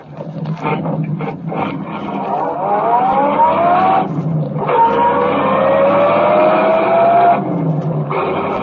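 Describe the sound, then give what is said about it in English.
A car engine roars loudly, climbing in pitch as it accelerates hard chasing another car, dropping briefly at two gear shifts before surging again. No voices. “Go on, drive. Chase that car.”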